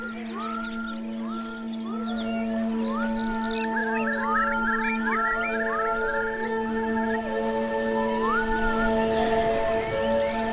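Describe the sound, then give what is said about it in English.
Many overlapping rising, whistle-like calls from a huge flock of thousands of birds of every kind, repeating in quick succession over a steady, continuous humming drone, at a beach; no voices. “They're coming! There are thousands of them! Birds of every feather!”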